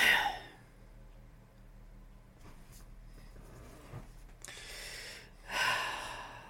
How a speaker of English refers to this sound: Hold on, folks. She's getting all choked up. It's the COVID, everybody, not the feelings.